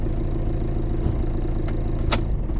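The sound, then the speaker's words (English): A car engine rumbles steadily as the vehicle pulls in and settles into a parking spot by the Lincoln Memorial, with a couple of short, sharp clicks near the end. “Now park by the Lincoln Memorial.”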